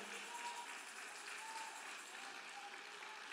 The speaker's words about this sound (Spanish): Denle fuerte aplauso al Señor con el corazón, aleluya.